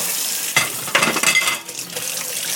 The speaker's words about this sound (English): Make sure the sink is clean. I'm going to turn the water on.